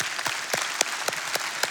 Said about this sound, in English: Can we give another round of applause to our kids? How great were they?